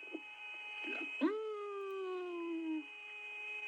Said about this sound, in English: The astronauts themselves referred to it as outer space music. This was their conversation. And that music even sounds outer spacey, doesn't it? Do you hear that? That whistling sound?